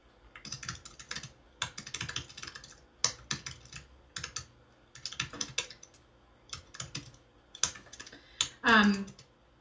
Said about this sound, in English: I started typing there again, so I lost it for a second.